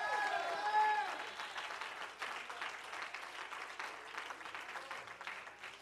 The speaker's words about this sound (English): Come on, clap your hands unto God and give him a shout. A victory! Amen!